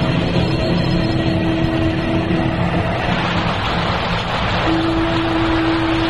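heavy rain

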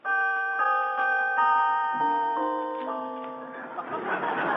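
doorbell ringing

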